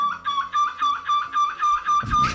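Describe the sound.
A contestant in a seagull-shrieking competition imitates a seagull's shriek, letting out a rapid series of high, piercing cries in a steady rhythm, loud, ending with a harsher, noisier burst.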